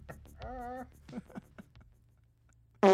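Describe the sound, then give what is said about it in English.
A loud, buzzy fart sound effect bursts in abruptly at the very end, following a few seconds of quiet voice-like sounds and murmuring. “Protein farts!”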